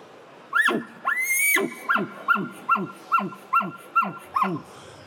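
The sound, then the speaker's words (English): An elk lets out a sharp bark, then a brief high squealing whistle, followed by a steady run of about seven guttural chuckles, loud with no talking. “And there's a bark chuckle right here.”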